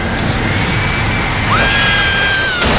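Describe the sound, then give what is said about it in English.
A jet-powered hair dryer, invented by Lisa for Lola, cranked all the way: a loud, steady jet-engine roar blasts without letup, with a thin high whine sliding across it and a brief rising squeal midway, no voices. “Lisa invented a jet-powered dryer just for Lola.”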